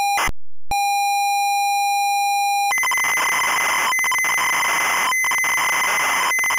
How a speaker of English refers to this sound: the game would take about 45 minutes to load, and then you'd play it for about 3 minutes, and then start the whole thing again. Mm-hmm. Yeah, and the Spectrum would go beep, beep, beep. Yep, same. Beep, beep, beep, beep, beep, beep, beep, like that.